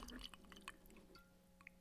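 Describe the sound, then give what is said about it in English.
A faint trickle of Macallan whiskey being poured into a glass, with a few small splashy drips and clinks over about two seconds, no voices. “Did the mic pick up the pour?”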